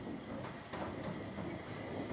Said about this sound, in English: John's sister Anne would take him to the local station to wait for the steam trains to come in.